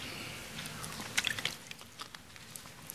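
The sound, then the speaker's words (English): Someone takes a quiet sip of water, with a few soft, wet mouth clicks and a faint swallow against a low background hum. No one speaks. “Take a sip of water.”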